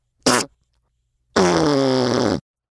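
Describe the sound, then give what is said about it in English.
Two loud farts from a chubby little hippo, with no talking: a short sharp burst, a pause, then a longer, buzzing, drawn-out one lasting about a second. “His farts were especially stinky.”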